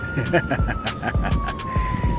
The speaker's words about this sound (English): And just like in any major movie that has to do with being in any big city, you notice how they always have that scene where you hear the ambulance, fire trucks, or the police sirens in the background.